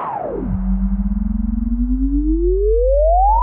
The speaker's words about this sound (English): Test number two. Sideband effect. 40 and 184.